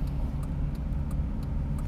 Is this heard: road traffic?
yes